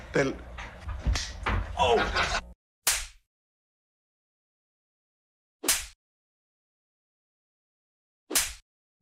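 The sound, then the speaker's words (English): A man speaks briefly at a press conference, then slaps himself: three sharp, loud slaps ring out alone, spaced about three seconds apart, each a crisp smack with a short decay into silence. “there was more than one John L. Smith slapping himself in a press conference incident”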